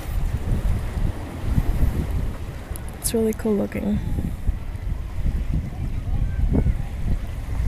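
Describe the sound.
Ocean water washes and rushes steadily throughout as the tide fills and drains a small peninsula-like spot open to the ocean, mixed with blustery wind buffeting the microphone; a person speaks briefly midway over the continuous outdoor wash.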